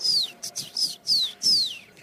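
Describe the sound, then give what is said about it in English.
A person imitates a blue jay call: a quick run of about five high, shrill, downward-sweeping squeals, fairly loud, with no other talking. “Okay, here is the question. What sound does a Blue Jay make?”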